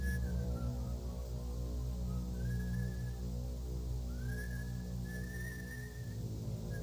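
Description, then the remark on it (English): Someone whistles a slow tune, a few sliding and sustained notes drifting up and down, set against a steady, thick low-pitched musical drone that runs throughout. “Yo, I'ma whistle while I shoot you.”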